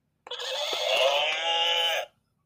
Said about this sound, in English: That was the horse.